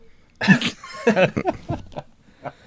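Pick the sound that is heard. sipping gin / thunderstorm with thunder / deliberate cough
deliberate cough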